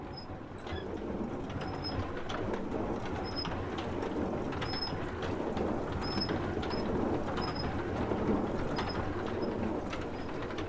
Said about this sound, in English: These are city mills, using water power to grind grain.